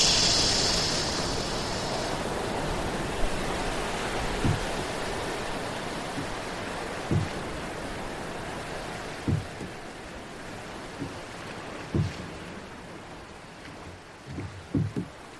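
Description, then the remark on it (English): A continuous, rushing wash of ocean waves fills the scene, steady and enveloping, with occasional soft low thumps breaking through. No voices are heard. “We will become part of the waves.”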